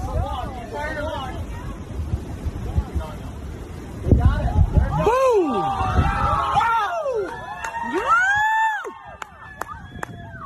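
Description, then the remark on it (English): An outdoor crowd chatters, then erupts into excited cheering with rising whoops and shouts as a spy balloon is shot down off the coast of Myrtle Beach, South Carolina, by a Sidewinder missile from a U.S. Air Force F-22 fighter jet; the cheering swells for several seconds before tapering off, with a few scattered calls near the end. “You've probably seen the videos of crowds cheering as that spy balloon was shot down.”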